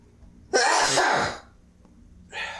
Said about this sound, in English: So basically this episode is just going to be you sneezing. So annoying.